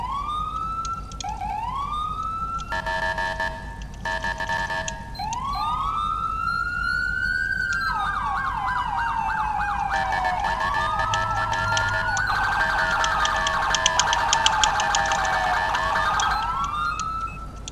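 An electronic emergency siren from a Federal Signal Smart Siren SS2000SM sounds continuously and loudly, cycling through rising wail sweeps, rapid yelp and steady tones, with overlapping siren patterns and a constant low engine rumble underneath.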